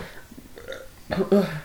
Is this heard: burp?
yes